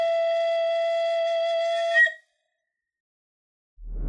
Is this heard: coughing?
no